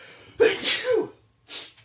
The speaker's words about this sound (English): I'm going to sneeze. Hang on.